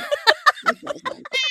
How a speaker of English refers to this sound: Say hi, Uno, the naughty kid. Meow, meow. Meow, meow. I can't talk to anybody without Uno saying, oh, I would like to come say hello.